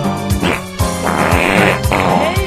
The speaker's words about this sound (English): it took me a little navigating to figure out these were in fact our farts here